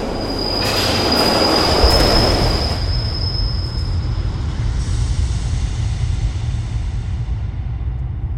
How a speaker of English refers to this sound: Then, just as the train is about to burst into the station, a sudden, gut-wrenching shove in the middle of your back sends you flying out onto the tracks in front of the oncoming train. The last thing you see is the train driver covering his eyes.